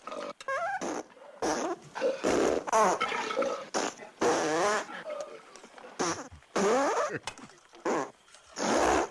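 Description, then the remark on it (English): A rapid string of loud farts from the film Blazing Saddles, each a short buzzing burst with varied pitch, tumbling one after another over several seconds with brief pauses between clusters. “Just here come the farts.”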